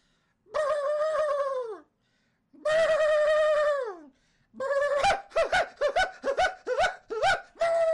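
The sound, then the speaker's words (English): A person vocally imitates the call of a North Alaskan split-toed green-billed hyper robin: two long, drawn-out, reedy cries that sag in pitch at the end, followed by a quick run of short, choppy hoots. No other talking. “You got to get into character to do some of these birds.”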